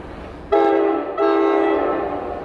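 A commuter train horn blares twice over a low rumble of rolling rail cars at the Middletown rail station, the first blast starting abruptly, the second following after a brief dip, loud.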